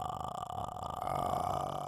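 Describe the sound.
A voice imitates the ghost's croaking death rattle from The Grudge, a raspy, drawn-out throat sound that holds steady for about two seconds, fairly loud, with no words spoken.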